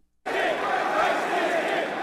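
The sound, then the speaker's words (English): A large crowd at AFPAC chants "Christ is King" and roars together after a sudden start, a dense wall of many voices holding steady and loud for about two seconds. “I think they're saying Christ is King.”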